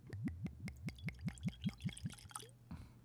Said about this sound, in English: That sounded money. For the record. That sounded like a deer hammer. For the record, that was not a 4-ounce pour.